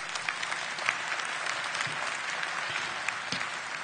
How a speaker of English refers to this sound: So we should give everybody a big round of applause for that.